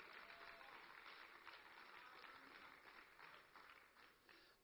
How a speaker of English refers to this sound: Can we clap our hands unto God and give Him praise?